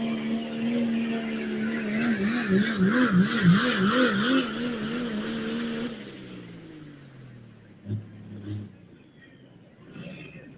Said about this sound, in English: Oh, I love this tractor. No air ride front, just the way it's all trussed out. Narrowed up front end.